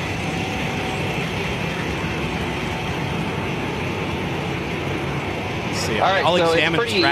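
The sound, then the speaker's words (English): A steady, loud mechanical rumble of a car hauler truck while vehicles are loaded onto it, running continuously, with a voice starting to talk near the end. “Let's see your truck getting loaded. I think we got a clip of that.”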